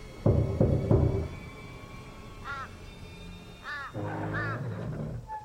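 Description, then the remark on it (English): An old front door creaks open in a few squeaky, wavering groans of rising and falling pitch, after a short burst of heavy thuds at the start. No one speaks. “That creaking old sound reminded me of the O'Reilly's estate. The door opened”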